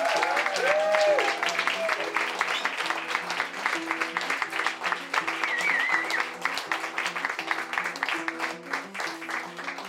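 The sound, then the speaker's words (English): A crowd claps loudly and steadily for about ten seconds for someone who came up onto the stage tonight, a dense wash of applause with a few cheers rising early on and music playing beneath it. “I just can't thank you enough, and I think enormous applause goes to you.”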